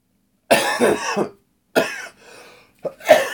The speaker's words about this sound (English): I was really trying to suppress that cough that whole time because I could feel it building up. I'm so sorry that I didn't hit the pause button, but am I out of practice.